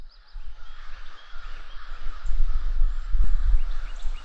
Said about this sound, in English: I hope you can hear that okay. It sounds like the crows are having a party over in the woods. Wow. Something's definitely going on.